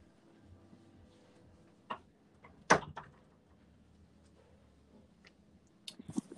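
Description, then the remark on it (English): A door is pushed shut with one sharp, solid clack, surrounded by a few softer clicks and handling noises in otherwise quiet surroundings, with no talking. “I'm actually going to shut this door because there's a little bit of background noise.”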